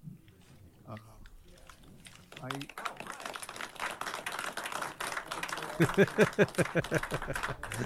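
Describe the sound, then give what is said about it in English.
A roomful of people at a 9 a.m. county board meeting breaks into steady applause as a resolution passes. The applause builds after a couple of seconds and keeps going, with scattered voices and a brief cheer or call rising over the clapping. “Gotta love, I love that applause.”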